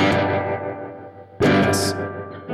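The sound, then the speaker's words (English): An electric guitar played through a tremolo reverb pedal in tremiverb mode, with depth and rate controls, voiced after a Fender Blackface vibrato channel reverb: a chord rings out with a washy, effected tail, then a second strum hits loudly and sustains, alone with no talking. “So let's throw it into tremiverb mode. So now we've got, what do we got? Depth and rate.”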